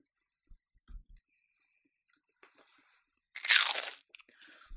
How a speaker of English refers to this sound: I know you guys, what people love is when you chew into the mic.